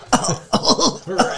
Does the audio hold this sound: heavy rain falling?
no